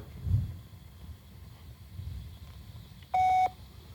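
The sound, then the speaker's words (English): A single loud, steady electronic beep, like a voicemail prompt tone, sounds for about half a second near the end, following a few seconds of low, muffled background rumble. “They made the please leave your message toad for... people sound like children.”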